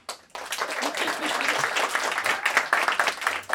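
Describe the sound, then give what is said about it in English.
A crowd claps steadily for a few seconds after a name is announced during introductions, a dense, bright patter of many hands at an even loudness, with faint voices mixed in underneath. “After each name, you can clap.”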